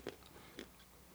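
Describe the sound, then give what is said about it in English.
Two crisp crunches about half a second apart, someone chewing pistachios, quiet with no talking. “I chew my pistachio.”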